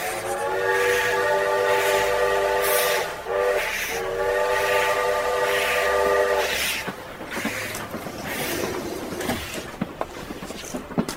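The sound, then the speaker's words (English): A train's steady, multi-tone horn blares for about six seconds, then gives way to the rumbling, rattling clatter of a carriage rolling along rails, punctuated by sharp clicks. No one speaks. “Chris and I boarded the train and were lucky enough to find an empty car.”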